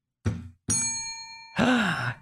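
A single bell strikes and rings out with a bright, sustained shimmer, fairly loud, after a short dull thud, followed by a loud groaning sigh.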